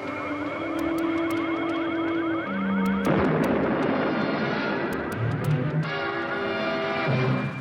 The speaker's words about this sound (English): The quadcopter's exploded. A flash. See that? What was it? I don't know. The computer shows a pressure wave. Apparently an explosion. Distance, 120 miles.